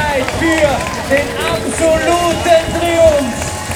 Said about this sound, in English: That's, all right, here comes the crowd again. Here comes the crowd. Eliud Kipchoge.